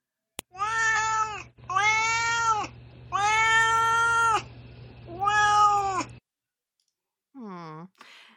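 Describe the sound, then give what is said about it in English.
A cat named Duarte meows four times in a row, each call long and drawn out, then gives a shorter falling meow after a brief pause. A soft click comes just before, with a low hum underneath. “Now it is time for Duarte's Corner, where my cat Duarte shares his opinions about the book.”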